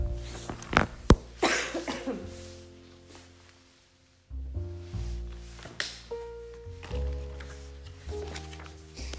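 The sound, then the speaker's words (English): A person coughs a few sharp times in the first second or so, followed by quiet stretches with soft background music playing underneath and no one speaking. “And then, our final one, as I go get some water to stop coughing.”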